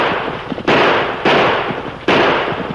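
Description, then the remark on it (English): Three loud gunshots ring out at uneven intervals during a stagecoach holdup on a trail, each a sharp crack followed by a long, rumbling decay that blends into the next. No voices are heard. “You ornery fool. You're shooting wild.”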